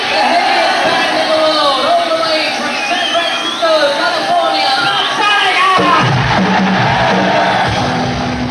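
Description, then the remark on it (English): A large festival concert crowd, waiting for a band to come on stage, roars and cheers continuously, with many overlapping shouts and whoops. Partway through, a low droning tone joins the steady, loud din. “How was the crowd reaction?”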